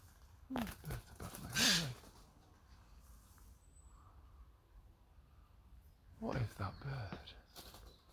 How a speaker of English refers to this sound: Fledgling bird.